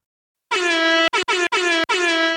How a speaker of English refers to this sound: Just get air horn apps on our phones.